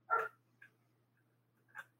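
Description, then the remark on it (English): A dog gives a sharp bark, followed by a brief faint yip and then a second, softer bark a moment later, heard over a low steady hum with no talking. “Sorry, I was muting myself because of that dog.”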